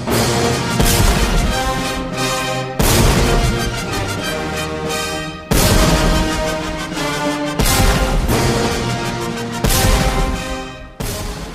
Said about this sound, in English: I see it in the movie V for Vendetta, the 1812 Overture.